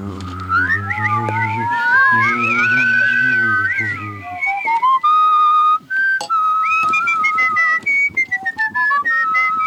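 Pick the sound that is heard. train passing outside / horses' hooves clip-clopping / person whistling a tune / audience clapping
person whistling a tune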